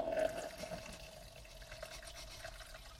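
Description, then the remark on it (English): Wine pours steadily into a cup, a soft continuous trickling and gurgle that stays fairly quiet throughout, with no voices. “She just poured wine into this cup and how much more are you going to pour?”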